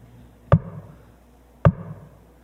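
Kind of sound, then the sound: household object, knocking on a door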